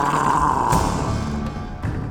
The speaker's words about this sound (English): pointed his staff at the guard and growled.